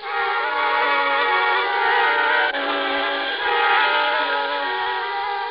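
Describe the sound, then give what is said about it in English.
A train whistle blows in one long, loud, sustained tone for several seconds, with a brief dip midway and a faint rumble of the train beneath, on a train going down to New York. No one speaks. “then a train down to New York.”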